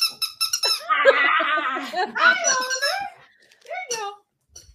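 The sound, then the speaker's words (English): A dog named Oliver plays with a squeaky toy: it squeals in a rapid burst of shrill, wavering squeaks, then a few shorter squeaks follow after a brief pause as he chews it. “Oliver's like, give me my toy back right now. Sorry, I got dog beds and toys everywhere.”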